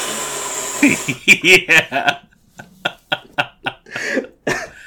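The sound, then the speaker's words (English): A voice imitates kids on a bus blowing into a Nintendo DS microphone to blow up balloons in a game: a string of breathy, gusty puffs and blows, some with a hoarse, wheezy edge, repeated in quick irregular bursts of about a dozen. “you had to physically blow into the mic to blow up your balloons”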